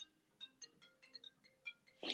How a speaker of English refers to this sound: Is that your phone ringing, Mario? You're on it. No, that's Oscar's iPad